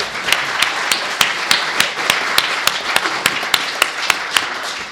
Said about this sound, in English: Well, I would like us all to give a warm round of applause to the panelists.